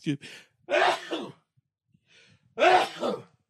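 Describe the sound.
Two loud sneezes, strongly voiced and almost shouted, separated by a pause of over a second, with short breathy sounds before the first.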